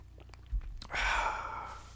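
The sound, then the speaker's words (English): A quick sip of 2015 red wine from a glass: a few faint mouth clicks, then a soft airy slurp with a breathy exhale, with no talking. “Well, to your second question, I will take a quick sip now of...”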